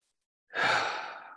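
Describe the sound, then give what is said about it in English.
A single deep, breathy exhale, like a slow sigh, swelling quickly and then tapering off over about a second, with silence before it and no talking; the second of five slow breaths in a guided breathing exercise. “That's two breaths.”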